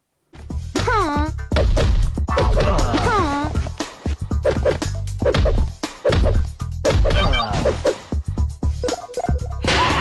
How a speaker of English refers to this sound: So as you would have heard, it's just constant, like, punch. Like, it's a weird groan, and it's every, like, three punches that she does, and each character like your, does the exact same thing.